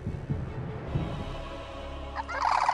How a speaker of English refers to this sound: And the bird takes a hit from a new contestant wielding a lawn chair.